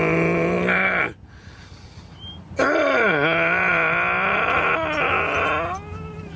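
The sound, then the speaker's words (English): A dog whines loudly in long, wavering cries whose pitch dips and rises, broken by a short quieter pause before the whimpering resumes. No one speaks. “Dog in the back.”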